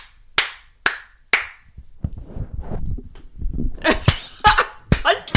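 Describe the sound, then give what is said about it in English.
Three sharp hand claps in a steady rhythm, made to sync recordings at the start of a recording session, each crisp and loud, followed by low muffled shuffling and a cluster of quicker, scattered clap-like snaps. “Need to clap or something? Yes, let's do it.”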